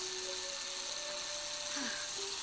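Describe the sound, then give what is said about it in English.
A two-directional electric drill, run backwards to turn back a car's odometer numbers, runs continuously, a steady high-pitched whir with a faint underlying motor whine that holds for the whole stretch without pausing. “Yeah, keep drilling.”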